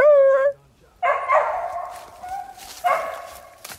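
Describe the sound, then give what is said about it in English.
A hound bays loudly on striking the scent of a raccoon: a short, high yelp, then a long drawn-out bawling bark, and after a brief pause another ringing bawl, with no one talking. “Fern just struck a coon”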